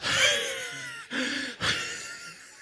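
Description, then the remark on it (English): A person imitates heavy, exhausted breathing after a workout: three loud, rasping breaths in quick succession, with no talking. “I got to that point where you start breathing in a way that God never intended for you to breathe.”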